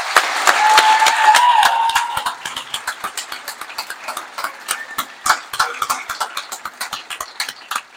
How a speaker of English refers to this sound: And let's give another round of applause to these first responders out there.